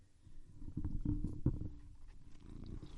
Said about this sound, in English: He's purring really loudly. I'm not sure why. He's really distracting me right now.